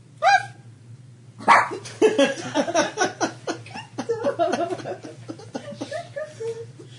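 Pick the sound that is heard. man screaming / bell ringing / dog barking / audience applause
dog barking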